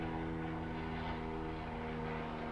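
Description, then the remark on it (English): An old propeller airplane drones steadily overhead outside a window near an airport, its engine producing a constant, throbbing hum with layered low tones that persists throughout without any voices. “Can you hear the plane right now outside my window?”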